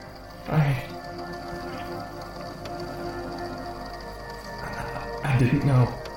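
Steady rain hisses throughout at a moderate level, broken twice by short, louder low bursts that sound vocal, once near the start and again near the end.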